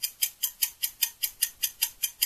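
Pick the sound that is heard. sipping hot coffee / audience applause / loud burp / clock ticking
clock ticking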